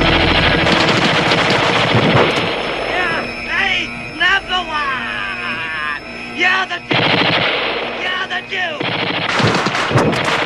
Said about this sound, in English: When the Duke rushes out to shoot at Snake, the President suddenly hits him with another automatic rifle from the top of the wall.